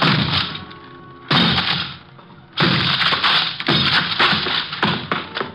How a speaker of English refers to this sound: 4 smashes and 3 torn ligaments later, the thin door collapsed over the desk blocking it.